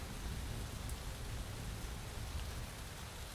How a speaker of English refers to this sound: But already, the rain had saturated the girl from Roselawn, as well as the child from Dogtown.